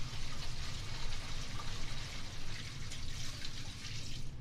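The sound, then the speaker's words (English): A toilet is flushed by a person, a steady rush of running water that carries on evenly for several seconds, with no voices over it. “See, he flushed the toilet now.”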